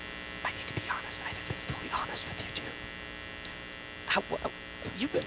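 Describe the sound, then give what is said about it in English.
A steady electrical buzzing hum drones without a break for the whole stretch, loud, while people talk intermittently over it. “this buzz must be loud enough to stop any recording it's devices”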